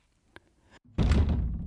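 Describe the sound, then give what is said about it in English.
The push door of a sound booth swings shut, starting with a small click and a low rumble before landing in a loud, heavy thud with a short burst of noise. No one speaks. “You know I have trouble opening the door of the sound booth once I'm in here.”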